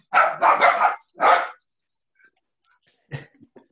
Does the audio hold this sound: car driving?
no